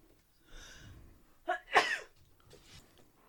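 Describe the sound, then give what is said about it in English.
A single sharp sneeze, preceded by a breathy intake and ending in an explosive burst, followed by a faint sniff or exhale. No talking. “And excuse my sneezes”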